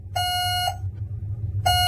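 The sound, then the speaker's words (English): Two sustained electronic beeps, each a steady bright tone about half a second long, separated by a pause of roughly a second, with a low hum running underneath throughout. “One beep for yes, two beeps for no.”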